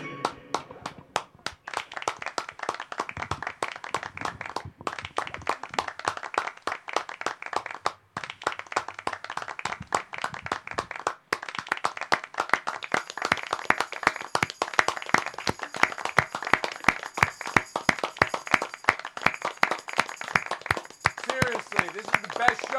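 An audience at a Music Appreciation Night in a mall claps and applauds the keyboard player steadily, a dense stream of sharp hand claps that carries on without a break and grows louder and fuller toward the end.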